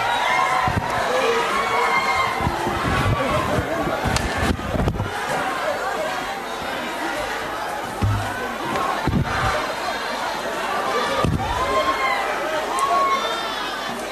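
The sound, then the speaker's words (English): A chaotic scuffle in Parliament as EFF MPs chant for President Zuma's removal and Parliament's Protection Services members storm the house: many voices shouting over each other continuously, with sharp thuds and bangs as water bottles, handbags and hard hats fly. “Parliament's Protection Services members stormed the house and chaos followed as water bottles, handbags and EFF's hard hats flew.”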